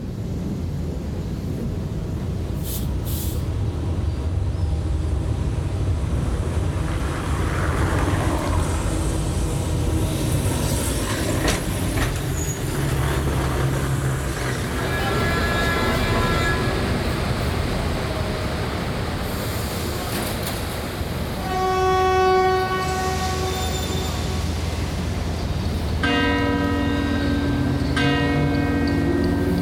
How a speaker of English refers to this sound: Michael Rusenberg and Hans Ulrich Werner recorded this soundscape of the Lisbon-Portugal tram, the city's streetcar system.